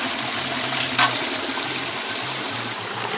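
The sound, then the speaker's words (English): A rice washing machine slowly removing the outer layer of the rice and cleaning it: a steady, loud rush of churning water over a low, intermittently pulsing motor hum, with one brief splashy clink partway through. No one speaks. “So the next step, he is taking it over to our rice washer and having that machine just slowly take away that outside and clean the rice for us.”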